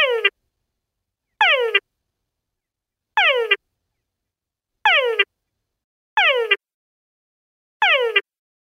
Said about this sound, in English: Wow, it sounds very laser beamy. Yeah, it's a very sci-fi frog noise, for sure.